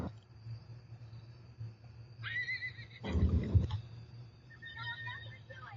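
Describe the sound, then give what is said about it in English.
Horses neigh and whinny over a steady low rumble, with a shrill wavering call early on, a sharp breathy snort in the middle, and fainter whinnies near the end. “She won't hurt the horses.”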